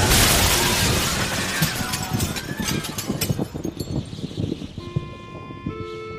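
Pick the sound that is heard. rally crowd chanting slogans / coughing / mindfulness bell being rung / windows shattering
windows shattering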